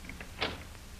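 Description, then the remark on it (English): A cell door is opened with one short scrape and rattle of metal, standing alone against a low background hum, with no voices. “I'll open the door.”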